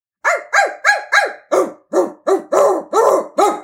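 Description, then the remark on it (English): A voice imitates a dog barking, about ten sharp, evenly spaced yaps in quick succession, loud with no other sounds around them. “And we'll do some dog barking.”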